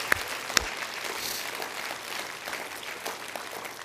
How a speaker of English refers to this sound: Let's clap our hands to the word of the Lord, description of a godly woman.